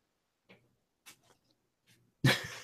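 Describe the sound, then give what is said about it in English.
A dog whines in a few short, soft bursts spaced apart, then lets out a sudden louder whimper at the end, with no one talking. “This dog.”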